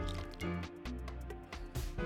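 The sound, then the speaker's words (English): Wet slurping and sipping of a tart sour beer, a few short liquid pulls with squishy mouth sounds over a low background hum, no talking. “Cheers to Monday night. Let's give really it a let's give it a sippy. A little taste test here.”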